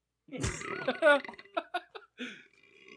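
A loud, drawn-out burp rumbling for about a second, followed by a few short, choppy vocal bursts.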